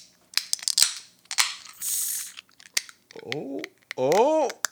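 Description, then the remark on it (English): A beer can is opened with a finger worked underneath the tab: scratchy metallic clicks, a sharp tab snap and a brief hiss of escaping fizz, followed by a person's drawn-out vocal exclamations. “I heard a fizz, and I thought, it was my finger trying to get underneath the can.”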